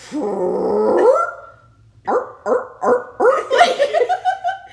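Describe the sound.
A voice imitates a long, buzzy, rumbling fart lasting about a second, followed after a brief pause by a string of rhythmic, bark-like vocal bursts, fairly loud.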